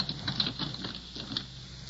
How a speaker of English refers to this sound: Hall lights are out. Pitch black. Something padded off on 4 feet. God, smells like a cat.